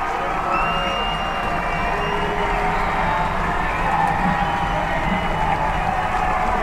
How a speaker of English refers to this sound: Crowd's getting loud here at Andre Reed Stadium, and another whistle.